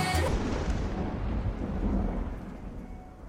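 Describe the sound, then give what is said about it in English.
A sharp crack of thunder at the end of a song bursts out at the start, then a deep rolling rumble lingers and slowly fades, heavy, with no voices. “I just love that … just ends with a clap of lightning and you're done.”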